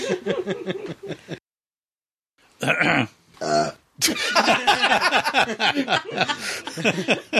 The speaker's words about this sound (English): When you burp, you have to say pardon me.